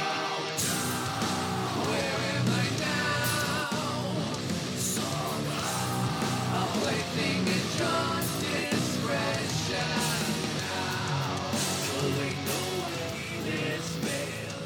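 A heavy, metal song plays loud and dense throughout, with distorted guitars, pounding drums and harsh screamed vocals riding over the thick wall of sound.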